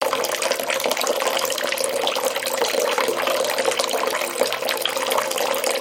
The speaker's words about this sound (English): He ran more hot water.